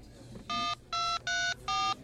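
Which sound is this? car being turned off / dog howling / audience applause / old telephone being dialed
old telephone being dialed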